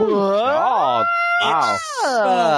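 A dog howls in a loud, continuous series of wavering, rising and falling whines and yowls, with brief gaps between the drawn-out cries.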